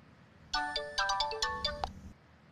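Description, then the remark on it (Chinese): A telephone rings with a bright electronic melody, a quick run of chiming tones lasting about a second and a half, fairly loud, with no one speaking; a scam call in Hong Kong from fraudsters claiming to be from the Hong Kong Immigration Department. “the telephone scam involving fraudsters calling people claiming to be mainland officials”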